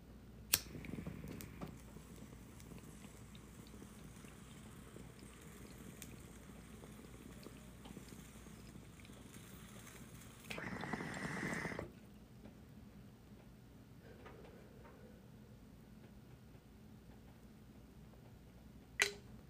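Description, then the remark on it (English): A sharp lighter click opens a long, steady hit from a bong with low, continuous bubbling, swelling into a louder gurgling burst near the middle before settling, then a final click. No one speaks. “All right, guys, I hope you're about to spark up with me as I hit for the first time on this episode.”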